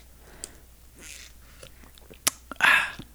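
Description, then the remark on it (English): Someone sips a salted caramel latte from a local coffee shop: a few soft wet mouth clicks and swallows, then a loud, airy slurp near the end. No one speaks. “I've got a salted caramel latte from our coffee shop.”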